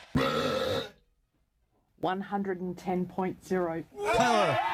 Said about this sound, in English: at the urging of his wife, who recognized his burping talents, encouraged him to go for the record, and he blew it away.